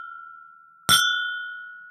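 A single sharp clink of glasses touching in a toast, followed by a bright, bell-like ring that slowly fades out. No one speaks.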